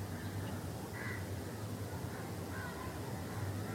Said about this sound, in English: When you listen to that, to the sound of the crow, listen, not with your own noises, with your own thoughts, with your own ideas, with your own opinions,